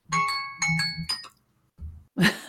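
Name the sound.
timer going off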